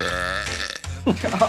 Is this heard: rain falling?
no